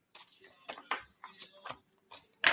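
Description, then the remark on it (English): Cards being shuffled during a card reading: a series of short, crisp papery bursts at an uneven rhythm, with a louder, fuller riffle at the end. No one speaks. “So let me continue to shuffle these.”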